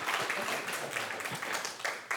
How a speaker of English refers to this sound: Yeah, we can clap. That's good. Like two of you are ready for it.